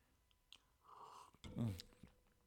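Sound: slurping a drink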